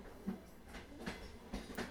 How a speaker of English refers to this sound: The train slowed down as it went across the bridge.